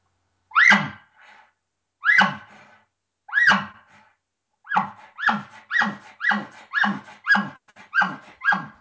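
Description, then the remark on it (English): A reed mouth call sounds a series of bark-like two-part calls, each a sharp burst with a softer drawn-back tail made by breathing air back in with the tongue, not on the reed: three spaced slowly, then about eight in a quicker, steady rhythm. No one talks. “But then the second part of the call, I'm breathing a deep breath of air back in with my tongue, actually not on the reed at all. And it's making the second part of the call, and I'll do it slow at first, and then I'll speed it up a little bit.”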